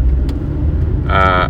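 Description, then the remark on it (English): A car drives in the rain with a steady, loud low rumble of engine and road noise; a brief bright, buzzing tone joins in over the last moments. “It's been raining for the last 2 hours as I've been driving for the last 2 hours, and fucking sky's orange and shit.”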